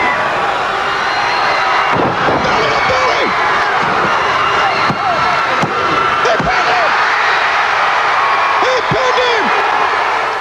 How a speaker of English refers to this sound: You hear that crowd? I heard that crowd. Everything they did was good.